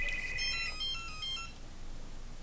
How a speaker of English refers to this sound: Is that my headphones going out? What is that? Is it the hotel room phone? Oh, it is.